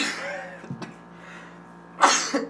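A sudden, loud sneeze bursts out after a stretch of quiet room tone, followed by a brief, softer exhale or sniff.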